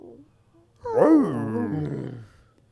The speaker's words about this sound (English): Dude, dogs yawning is so funny. Especially when they make a little noise.